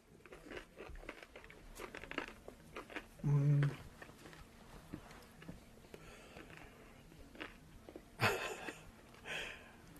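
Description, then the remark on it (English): Crunchy bites and chewing of a tart garlic pickle, with a few sharp, loud crunches standing out among softer, irregular mouth sounds and faint rustling. No one speaks. “It's so tart and crunchy. I'm almost afraid, and it's got enough garlic in it.”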